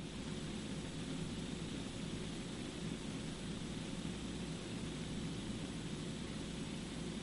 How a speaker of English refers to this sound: Excuse me, it's thundering outside right now. I'm hoping we don't lose everyone here. But we're catching some of the rain now that's coming up from the south.